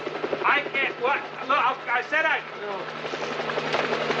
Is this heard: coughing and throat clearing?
no